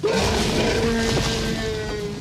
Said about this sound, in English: So if you think about, you know, that iconic T-Rex sound, it was this huge roar.